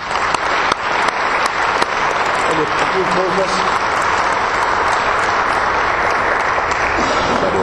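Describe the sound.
Sustained applause from a crowd at a gathering of over 10 audiences from several states, given to a pastor, dense and steady for several seconds with a few sharper claps standing out, loud throughout, with faint voices mixed underneath.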